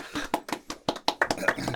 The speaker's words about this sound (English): Clap.